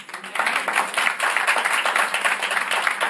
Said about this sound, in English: Y'all better give a round of applause for that.